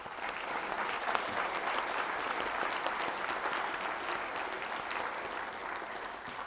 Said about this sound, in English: And so we're very grateful to the speakers. And if we can just give them a round of applause.